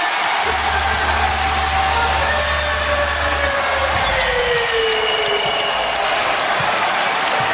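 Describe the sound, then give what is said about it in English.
A large NBA arena crowd, including the Knicks, applauds Vince Carter of the Hawks after he takes and hits a three in overtime, a dense wash of clapping and cheering that stays loud and even throughout, with a low rumble underneath and scattered whistles rising over the noise. “Even the Knicks are applauding.”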